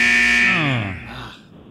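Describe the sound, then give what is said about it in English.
A single loud, harsh game show buzzer blares for about a second, then droops downward in pitch and fades away. No one speaks over it. “He said no answers after the buzzer, Matt.”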